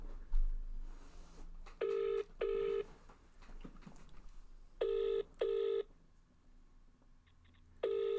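A phone line ringing out: three bursts of a double-pulse ringback tone, each pair a steady mid-pitched buzz, separated by quiet pauses with faint background noise and no talking.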